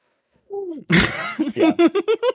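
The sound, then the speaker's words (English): A short vocal sound leads into one big, loud, breathy sniff, followed by a run of quick, rhythmic, pitched bursts like giggling laughter. “Big sniff. Big sniff.”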